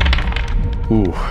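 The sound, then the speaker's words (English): Dice clatter and tumble across a hard surface in a quick series of sharp little clicks, rolled for the hit dice of two sets of fire beetles, before a man's voice starts speaking at the end. “I don't want to roll 4 times, so I'll roll 2 sets of creatures.”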